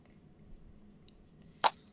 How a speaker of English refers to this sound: God. Whoops. I just like broke my water bottle. Oops.